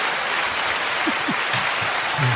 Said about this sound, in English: Get that nigga a round of applause, though.